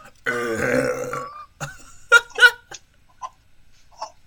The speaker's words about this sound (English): Daddy burps. Oh, you didn't open your mouth instinctively when I burped.